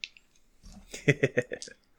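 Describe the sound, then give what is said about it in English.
A handful of dice, rolled for a strength and melee attack in a game, clatters and rattles across a hard surface, a quick cluster of sharp clicks that bunch up and fade within about a second, moderately loud. “Oh, man, I get so many dice for this.”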